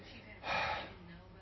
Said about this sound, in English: The heavy breathing and like, you imagine him looking in a mirror and go, I am beautiful.